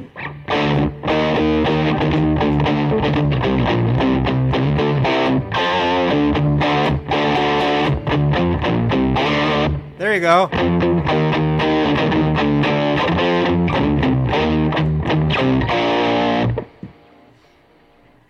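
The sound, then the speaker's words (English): A distorted electric guitar played through a Janis whammy pedal as a Christmas jam, with a pitch-bending swoop in the middle, runs loud and steady for about sixteen seconds before cutting off, followed by a brief spoken phrase. “That was featuring the Janis whammy pedal.”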